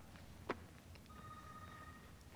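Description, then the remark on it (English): A faint cell phone ring: a sharp click, then a steady electronic two-pitch tone that holds for about a second over quiet background noise, with no one speaking. “Put your cell phones on silent.”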